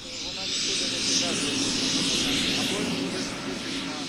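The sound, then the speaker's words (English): Military helicopters painted with blue and yellow bug eyes roar as they lift off after fog clears, a loud, steady engine and rotor drone that fills the whole clip without letting up. “The copters are painted with blue and yellow bug eyes and look like giant insects taking to the air.”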